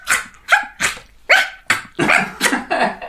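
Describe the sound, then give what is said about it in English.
A voice imitates a dog barking as the dog runs straight back out the door: about eight loud, sharp barks in quick succession, coming faster and running together toward the end, with no other talking. “And then he runs back and he runs straight back out the door again. And you hear him going...”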